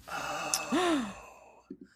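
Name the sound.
two people gasping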